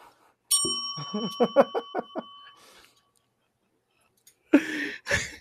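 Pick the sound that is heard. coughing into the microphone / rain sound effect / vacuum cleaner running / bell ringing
bell ringing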